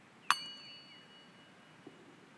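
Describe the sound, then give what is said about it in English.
A meditation gong is struck once to mark the start of a meditation, a sharp metallic strike whose bright ringing tones linger and fade over about a second, fairly quiet against a faint hush, with no voices. “The meditation will start with the gong and finish with the gong approximately 10 minutes later.”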